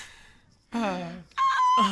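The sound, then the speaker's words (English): A woman screams loud, strained honking cries at geese in imitation of a goose: one long wavering call, then a second harsh burst after a brief pause. “She's now not only progress from singing to the geese to screaming goose-like noises at them.”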